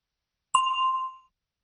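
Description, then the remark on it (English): A single clear bell ding, signalling listeners to say their answer to a question, strikes sharply and rings out with a bright, sustained tone that fades after about half a second, alone in silence. “Listen for the bell, then say your answer.”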